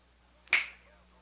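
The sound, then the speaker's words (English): A single crisp finger snap, made on request, a sharp bright click that fades quickly into a quiet background hum. “Go ahead. Snap your fingers.”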